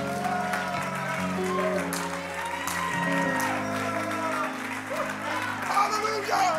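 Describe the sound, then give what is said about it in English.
A church audience claps steadily, the applause continuous and fairly loud, layered over sustained organ-like music and scattered voices. “Somebody clap your hands, lift your voice, magnify that name of Jesus Christ”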